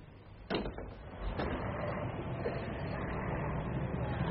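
Swing doors push open with a sharp clunk as someone goes outside through them, followed by a softer knock as they swing, then a steady wash of outdoor background noise takes over.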